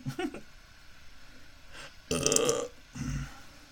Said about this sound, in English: Daddy burps. Oh, you didn't open your mouth instinctively when I burped.